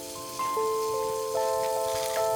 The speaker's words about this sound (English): Wash my hands in the bathroom sink.